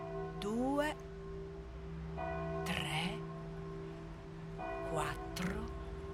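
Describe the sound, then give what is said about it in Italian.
A church bell in Rome, across the street from a recording studio, tolls five o'clock in the morning in slow, evenly spaced strokes, each ringing out into a long, humming decay, with brief bursts of rustling noise between the strikes. “Davanti allo studio di registrazione, dall'altra parte della strada, c'era una chiesa. Contai i rintocchi.”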